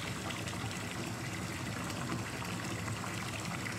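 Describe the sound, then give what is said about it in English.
A toilet flushing and refilling, heard as a steady, continuous rush of water at an even level for the whole stretch, with no voices. “Flush again. Just keep flushing.”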